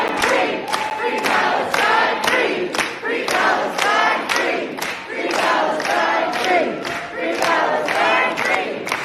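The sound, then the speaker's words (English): A loud crowd, mostly masked, celebrating a resolution for a ceasefire, claps in a steady rhythm while voices chant and cheer over it, the sharp claps landing roughly every half second throughout; one person can't clap on the beat. “I was just saying, there's one that like can't even clap on the beat.”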